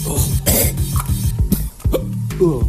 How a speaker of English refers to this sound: I just hiccuped and coughed at the same time. That was weird.